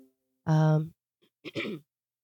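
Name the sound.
throat clearing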